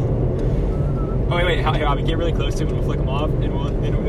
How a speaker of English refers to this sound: we are driving right behind you right now